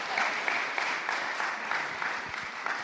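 A crowd of people claps steadily for a speaker who has just finished, a dense, even patter of many hands that holds at a fairly loud level throughout without any voices.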